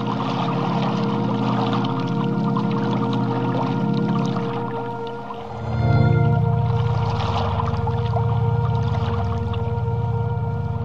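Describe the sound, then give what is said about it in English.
Steady rushing water laps and churns throughout, with a low, sustained tonal hum beneath; about halfway through the flow deepens into a heavier, fuller rumble. No voices. A lapping water sound effect at the end of a music album. “… ended with lapping rushing water, and … ends the same way.”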